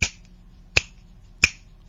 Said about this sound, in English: Snapping fingers. Correct. The answer was snapping fingers.